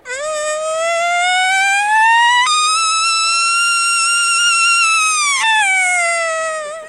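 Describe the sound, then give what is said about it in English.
A single elk bugle blown on a diaphragm call, started with low tongue and air pressure, then more tongue and air pressure: a loud, reedy tone climbs, jumps to a high whistling note held for about three seconds, then drops off abruptly at the end. “Elk Calling for the Complete Beginner”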